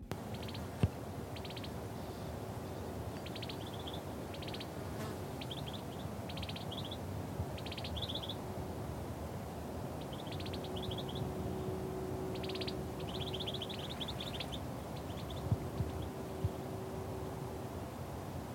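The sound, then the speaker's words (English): Two birds trade short, high chirping calls back and forth outdoors in a vineyard at Burn Cottage, bursts repeating every second or two over a steady low background rumble and faint hum, with no voices. “Here, you can hear two birds talking to each other.”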